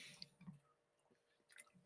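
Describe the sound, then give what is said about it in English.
Someone takes a couple of quiet sips of water, with soft wet mouth sounds and a faint swallow, and no talking. “I have water right here. I'll drink some water right now then.”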